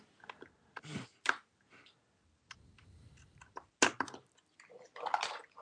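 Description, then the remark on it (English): Watery splashes and gurgling bubbles in a cartoonish underwater effect of someone diving into the deep blue sea, a series of sharp plunging bursts and clicks over a low burble, with no talking. “goes diving into the deep blue sea to get his headphones.”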